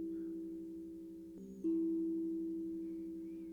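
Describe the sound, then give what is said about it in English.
A sustained, ringing instrument tone hums steadily, then is struck again with a mallet partway through, renewing a bright, resonant tone that slowly fades. No voices. “Can you feel the awareness of the instrument, the tones of it, the vibrations?”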